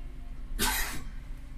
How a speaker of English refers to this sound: When you cough, you gotta say no corona. Corona free. Hey, you gotta say no corona when you cough.